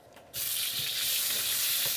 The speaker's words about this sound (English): That's the yasai. Stir frying that just briefly, so it starts to sort of cook some of the water out, turn color a little bit.